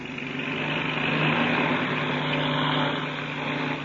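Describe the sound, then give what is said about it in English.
The engine of a black two-seater propeller airplane roars steadily and loudly as it warms up and takes off from a lake bed at daybreak, a thick continuous drone with a low buzzing hum that holds even throughout, with no voices. “As daybreak neared, the famous pilot and Chuck Ramsey climbed into the cockpits of the black two-seater and warmed up the engine. Then they start their takeoff.”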